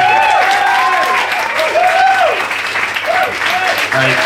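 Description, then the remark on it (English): An audience applauds loudly and continuously for about four seconds, cheering for a performer, with rising and falling whoops and cheers riding over the steady wash of clapping. “Can I give a massive, like, honest to God, just the biggest cheer you've got”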